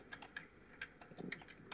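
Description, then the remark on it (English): Quick, uneven keystrokes on a computer keyboard, a burst of soft clicks tapped in close succession, fairly quiet with no voices, as someone types to check whether a claim is true. “You're typing around to see if I'm telling the truth.”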